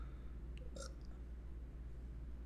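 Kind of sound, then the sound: human body sound, woman burping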